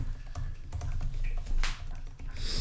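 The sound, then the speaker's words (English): Rapid clatter of keys on a computer keyboard, irregular taps coming in quick bursts over a low background hum, with no one speaking. “Listen to that typing.”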